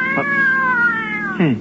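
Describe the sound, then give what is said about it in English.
A single long, drawn-out cat meow, loud, holding a steady wavering pitch before sliding down at the end, from a cat inside a car. “What the heck was that? A piece of steak. One of the cats is in the car.”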